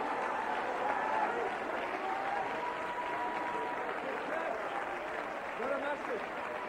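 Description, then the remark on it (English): A large crowd claps their hands steadily in a dense, continuous wash of applause, urged on by a preacher, with indistinct voices murmuring and calling out underneath throughout. “Come on, clap your hands.”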